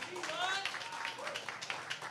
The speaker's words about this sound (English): All right. So all right. Round of applause. Who's on the T.Y. Hilton side here?